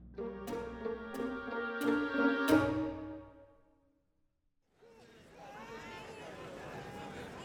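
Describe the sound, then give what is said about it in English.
A few sustained musical chords with sharp accents fade to a brief silence, then a dense, steady murmur of many overlapping voices rises from a market-day crowd on Acheron. “I did anticipate the market crowds would aid our exit from the spaceport.”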